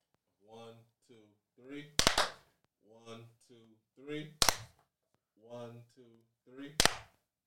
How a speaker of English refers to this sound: On the count of three, give me a clap.